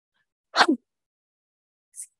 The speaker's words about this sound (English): Oh, I'm gonna sneeze.